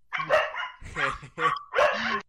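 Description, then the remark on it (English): A dog barks four times in quick, uneven succession, each bark loud and harmonic with a slightly whiny edge, with short gaps of quiet between them. “I think I'm just going to start leaving these dog cuts in because it's really too funny to ignore at this point.”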